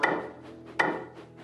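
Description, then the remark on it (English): Faint, hollow taps, two sharper knocks about a second apart with softer taps in between, sounding alone without any voices; in the Thomas the Tank Engine story the tapping comes from inside Thomas's firebox. “Not long into his journey, there was a faint tap, tap, tapping.”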